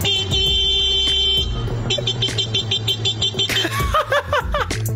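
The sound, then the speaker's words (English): A man's voice mimics a car horn, with steady blaring horn-like tones followed by a run of short beeps. Laughter and chuckling break out toward the end, fairly loud. “The noise you're going to hear sounds like a man being interrupted by a car. He isn't being interrupted by the car. He is making the car sound.”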